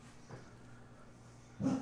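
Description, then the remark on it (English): A dog barks once, a short sharp bark near the end, after a fainter, muffled yip earlier, over a low steady background hum, with no one speaking. “So my favorite thing about her is she is a big barker. Right? She barks at everything.”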